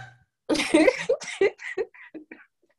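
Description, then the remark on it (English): A baby girl sitting on a parent's lap lets out a loud, rough burp, followed by several short, breathy little vocal bursts that fade into silence. “My child is on my lap and she just burped.”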